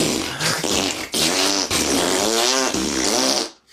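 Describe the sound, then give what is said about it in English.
Someone blows a long, loud, sputtering raspberry, a wet buzzing lip trill that wavers in pitch and comes in three quick pushes before trailing off. “Raspberries. The ultimate diss.”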